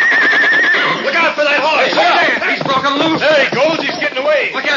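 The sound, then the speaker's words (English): A horse neighs and whinnies loudly, a long run of shrill, wavering cries rising and falling for several seconds with barely a pause. “Look out for that horse! Hey, he's broken loose!”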